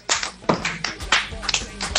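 A brief round of applause from a small group, with sharp, uneven claps close by that start and stop within a couple of seconds.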